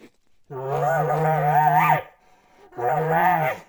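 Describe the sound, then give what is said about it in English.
A voice imitates an aggressive, frustrated bull with cows, making two low, guttural, drawn-out calls instead of a bugle, the first longer than the second, separated by a short pause. Fairly loud, with no other talking. “They'll hear those low guttural noises like that, and they know that that's an aggressive bull or a frustrated bull up there with cows.”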